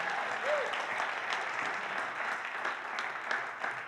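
An audience applauds steadily, a dense wash of many hands clapping at an even, moderate level throughout, with no voices standing out.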